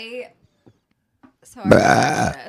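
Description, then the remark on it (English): A loud, drawn-out burp erupts after a moment of near silence, rumbling deep and raspy for over half a second. A brief voiced sound comes just before it. “I'm a burp bully.”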